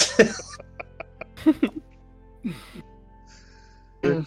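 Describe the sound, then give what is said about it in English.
A person imitates loud sniffing as the character Varn in a dice game: a burst of quick, short sniffs followed by a few longer, breathy snorts spaced out with pauses, no words spoken. “You hear the sound of Varn sniffing.”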